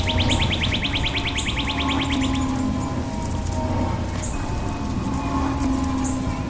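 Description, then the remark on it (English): Birds chirp in short, high bursts over the steady hiss and patter of garden sprinklers spraying water in the Little Village neighborhood, with a rapid ticking trill during the first couple of seconds. No one speaks. “The first thing that comes into my mind is birds singing and sprinklers watering the garden.”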